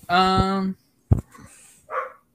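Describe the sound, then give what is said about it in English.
Dogs bark excitedly at home as a family member arrives, starting with a long, drawn-out yelping bark, then a sharp single bark and a shorter one after a brief pause. “Oh, my dogs are going a little crazy.”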